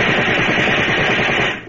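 A loud, rapid burst of gunfire, many shots cracking in quick, steady succession for nearly two seconds before cutting off abruptly, fired in darkness at a man fleeing out a side door toward the woods. No voices accompany it.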